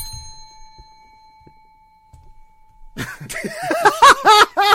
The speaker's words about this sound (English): Ring the bell all you want.